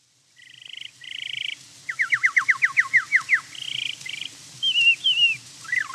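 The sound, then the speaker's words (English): Vaudeville performer Charles Kellogg imitates bird song: buzzy trilled phrases, then a rapid run of about a dozen down-slurred whistled notes, then more trills and warbling whistles. Fairly loud, and no talking. “What you're hearing right now isn't bird song. Well, it sort of is, but it wasn't made by a real bird.”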